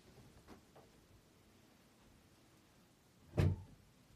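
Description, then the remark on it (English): A single solid thump of a kitchen door shutting, after a few seconds of quiet hum with faint small clicks. “I'm going to close the door to the kitchen.”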